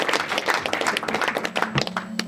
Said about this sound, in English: let's clap it up